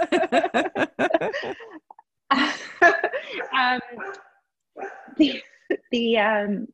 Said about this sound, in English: It's going to be a chorus. It's always good when the dogs chime into Cat Talk Radio.